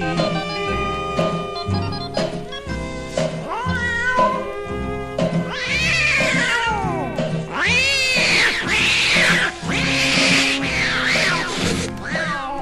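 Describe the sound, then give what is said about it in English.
Loud, wailing cat yowls rise and fall over a steady musical backing, building into an intense, overlapping screeching exchange in the second half, like tomcats caterwauling in a fight. “Now on that very same night, now that old tomcat started a fight, and this is the way it all did sound to me.”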